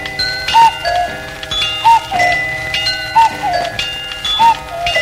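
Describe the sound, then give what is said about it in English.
Many clocks of different sizes sound together: a clock bell rings with a bright, ringing tone in a steady repeating pattern, about once every second or so, over a busy layer of ticking clockwork. No one speaks. “And bell.”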